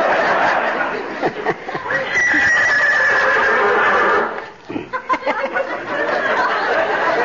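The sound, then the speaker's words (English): A horse named Lillian whinnies loudly in a long, quavering neigh, pauses briefly, then lets out another shaky, sputtering whinny, with no talking over it. “Charlie, let me introduce you to Lillian. Lillian, this is Charlie. You two horses ought to know each other.”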